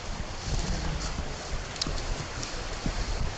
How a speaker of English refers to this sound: Ooh, I'm crossing a bridge. I don't know if you can hear the water flowing underneath. It's kind of powerful.